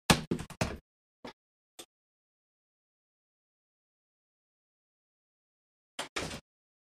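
A door is handled and shut: a quick cluster of knocks and thumps, two sharp latch clicks, then silence before a final pair of short bumps.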